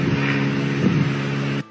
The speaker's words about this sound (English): You can hear the engine. Okay? That airplane, by the way, that's a cell phone video outside. There's no way it was altered or compromised.